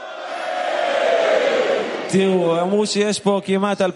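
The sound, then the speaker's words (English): A large crowd lets out a loud, sustained shout in unison for about two seconds, then it fades and a single man's voice starts talking over the dying noise. “So, every time I'm going to raise my hands up, we're going to yell out, like in South America, from my beloved brothers, we're going to yell.”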